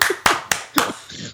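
About four sharp hand claps in a steady rhythm roughly a quarter second apart, fairly loud, like a brief burst of applause, with faint vocal noise between them.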